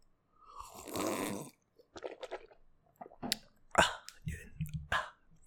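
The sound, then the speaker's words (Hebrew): Someone takes a sip of water: a broad wet slurp, then several soft swallowing and mouth clicks in an uneven sequence, with no talking. “אז רגע, שלוק.”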